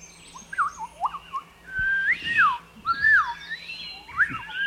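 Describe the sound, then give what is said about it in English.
A person whistles short, sliding tunes, rising and falling, trading phrases with faint, high birds chirping in the background. No one speaks; a low steady hum sits underneath. “Maybe we can even whistle back.”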